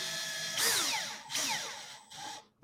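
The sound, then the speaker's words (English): A power drill whirs in three short bursts, its motor pitch sweeping as screws are driven in, with brief pauses between; fairly loud, no talking. “when I put my screws in place now and I'm drilling it in place, they're not going to be like sliding all over the place”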